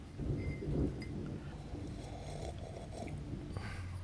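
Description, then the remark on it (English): A storm of steady rain and gusting wind brought by a cold front to the hill country near Austin, Texas, at almost midnight in November 2016: a deep rumbling roar beneath a constant hiss and a few scattered drips and taps, no voices present. “A cold front is moving in, bringing wind and rain to the hill country.”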